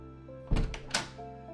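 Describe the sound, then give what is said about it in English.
A front door opens with a heavy wooden thunk followed moments later by a sharper latch click, against a quiet background with a faint low hum. “Go ahead. Answer our door.”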